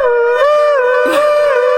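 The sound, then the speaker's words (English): A loud tornado siren wails on one sustained, mid-pitched tone with rich overtones, wavering slightly in pitch for the whole stretch, with no one speaking over it. “Was that the tornado siren? That was really loud.”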